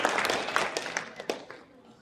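A burst of audience applause, many hands clapping at once in a dense, crackling wash that starts strong and gradually thins out and fades over about two seconds.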